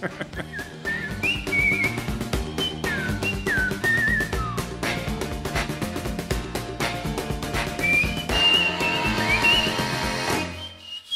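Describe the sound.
A person whistles a bright, lilting melody in short swooping phrases over a full band playing Creole music with steady rhythm, the whistle riding clearly on top of the music.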